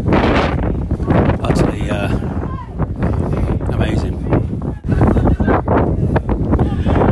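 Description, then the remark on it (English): Strong wind roars across an open field, buffeting the microphone in loud, continuous gusts, with indistinct voices faintly mixed in beneath the blustery noise. “Terrible start. Very, very windy.”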